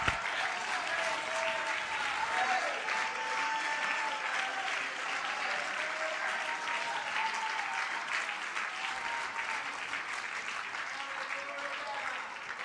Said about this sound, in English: Wonder if one more time we could clap our hands and shout with our voice unto the Lord.